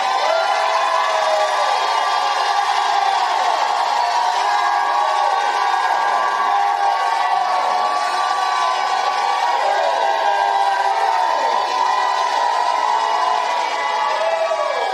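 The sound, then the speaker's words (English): An audience in a church shouts and cheers loudly and continuously, a dense wall of overlapping voices with rising and falling whoops carrying on without a break for the whole stretch. “He wants to see you shout in the church.”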